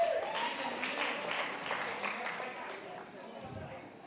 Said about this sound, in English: All right, guys, you can sit down. Thank you so much. Round of applause.